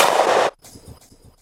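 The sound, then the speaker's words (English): A single loud shotgun blast fired at a woodcock in the woods, just to the left of a pine tree: a harsh full-spectrum crack lasting about half a second, then cutting off into a faint, low rumbling tail. “So that was completely safe, just to clarify, but I did have to duck down into the brambles for Sam to take that one just to the left of a pine tree.”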